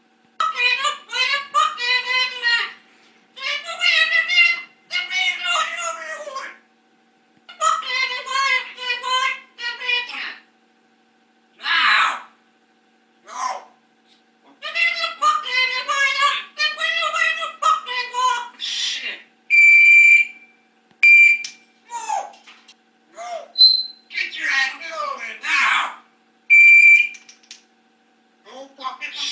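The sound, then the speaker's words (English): An African grey parrot named Bud chatters in high, speech-like phrases, then switches to sharp, steady electronic beeps, imitating an alarm or a smoke detector, with short pauses between bursts. “An African gray parrot.”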